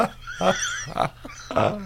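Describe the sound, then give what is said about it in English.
Three rough, breathy snorts from a werewolf falling asleep, in quick succession, each a short nasal burst with a grunting edge, heard alone with no talking. “Did you hear that snorting from that wolf werewolf?”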